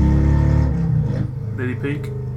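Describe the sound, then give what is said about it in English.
A motorcycle engine revs with a loud, low, buzzing rumble whose pitch rises and dips, while voices talk over it during the second half. “Wow, listen, let's just look at the fucking stupid motorcycle.”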